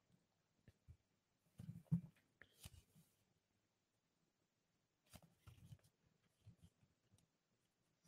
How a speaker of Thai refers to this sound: กำลังพลิกหน้ากระดาษอยู่นะครับใครที่ไม่เห็นภาพเดี๋ยวจะเห็นว่าทำไมเงียบไป